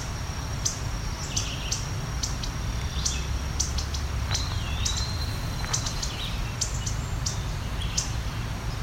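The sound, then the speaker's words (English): Red-eyed vireo calls from overhead and eastern wood-pewee calls sound among scattered high chirps and one slurred whistle, with a mourning dove in the distance, steady insect buzz and a low outdoor rumble underneath. “So you can hear some red-eyed vireo up there, the vireo call. And eastern wood pui is that pui call.”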